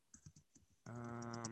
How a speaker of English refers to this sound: All right. Nuggets. Insert sound of typing here.